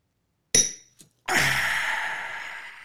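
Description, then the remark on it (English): Glasses clink together in a toast, a bright ringing tap followed by a faint tick and then a second louder clink that rings out and slowly fades, with no talking. “So we'll cheers and do this before.”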